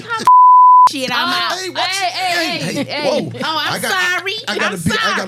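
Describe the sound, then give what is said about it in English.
A single loud, steady censor bleep tone lasting about half a second near the start, followed by people talking animatedly with some chuckling. “I gotta put a bunch of beeps on this one.”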